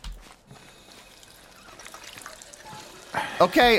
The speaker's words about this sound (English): Jeez, I thought he was going to drink out of it. I think I've done that before. I always think that he's going to drink out of it, but no, he just runs up and just starts pumping water.